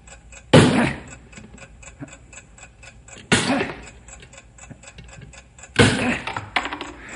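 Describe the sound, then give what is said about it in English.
A bomb's timing device, set between a chemical chamber and the explosive, ticks steadily and rapidly throughout, clear and interrupted three times by loud, heavy metallic blows spaced a few seconds apart as a wedge is hammered in to stop the ticking, with no talking. “Now the timing device is in between the chemical chamber and the explosive. You've got to drive that wedge in there and stop that ticking.”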